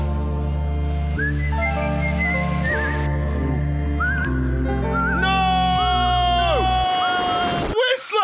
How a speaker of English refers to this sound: I'm just a farmer. Yeah, you're a whistling farmer. Oh, you mean like this? Yeah. Not a fan of the old whistle then, eh?